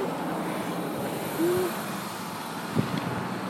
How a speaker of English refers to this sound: I feel like we just crossed the street, as you can hear. Probably. Traffic. Yeah, the traffic's really loud.